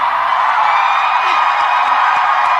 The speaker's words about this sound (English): They're cheering for Fauci like a rock star.